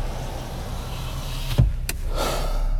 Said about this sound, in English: Let me roll down the window so I can see. We're having our first misty rain in a while here.